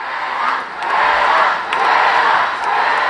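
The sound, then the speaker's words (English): A large crowd of marchers, swelling to 250,000 people, cheers and chants as it moves down the streets of Manhattan to Battery Park, in steady swelling waves, a loud, continuous roar of many voices that dips briefly and rises again, with no single voice standing out. “lead a crowd that will swell to 250,000 people down the streets of Manhattan to Battery Park, where Greta Thunberg herself makes an appearance.”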